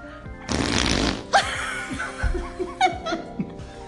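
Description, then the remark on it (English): A wet, sputtering fart noise made by pressing the mouth into an elbow crease, a loud burst lasting about a second, followed by bursts of laughter and chuckling. “That was like mouth in elbow pit.”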